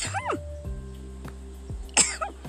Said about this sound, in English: hold on, I gotta sneeze.